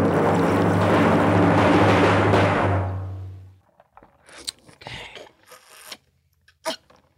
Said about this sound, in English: Who's Slurping? Now, there's going to be a drum roll. Then you're going to hear the slurp.